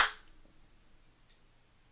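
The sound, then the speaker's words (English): Two sharp hand claps about a second apart, the first loud and bright, the second much softer, with quiet hiss in between and no voices; the claps trigger a Clapper that turns a baseball player lamp back on. “We've got a clapper in the house, ladies and gentlemen.”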